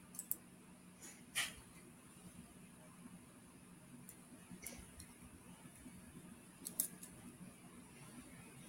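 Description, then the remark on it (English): A few soft, scattered keyboard clicks tap out at irregular intervals over a low, steady background hum, quiet, with long pauses between keystrokes rather than a steady typing rhythm. “I know he here because he's typing.”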